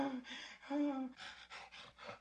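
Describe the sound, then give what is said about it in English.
Heavy, rasping breaths of a werewolf in a film, alternating inhales and voiced, growly exhales in a steady rhythm of about six breaths, with no talking, as it menaces two girls from the shadows of a basement. “Yeah, we get a first-person point of view of this werewolf, heavy breathing.”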